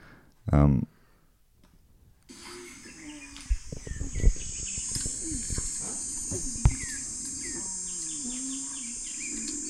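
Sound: birds singing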